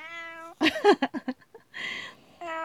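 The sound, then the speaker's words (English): A cat meows several times in quick succession, loud, with short drawn-out cries between sustained harmonic tones and a noisy stretch, no talking. “My cat is it really agrees.”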